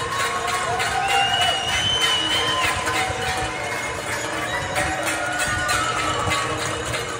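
A crowd outdoors in New York at 7 p.m. claps, shouts and cheers continuously to honor healthcare workers during COVID-19, with sharp metallic bangs like pots and pans and occasional whistles rising above the steady, dense din.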